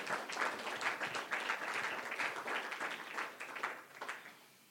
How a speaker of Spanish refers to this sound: Ah, gloria a Dios. ¿Cuánto le dan un aplauso al Señor?